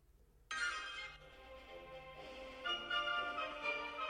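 A phone ringtone kicks in abruptly as the phone is being called and plays a bright, tuneful melody without pause, fairly loud, with no one talking over it.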